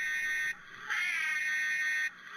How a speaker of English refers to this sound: My understanding is that was the sound that the ambulances made. From whenever they were using 1950s. Them. Yeah. Whatever. I think it's a 53 or something like that.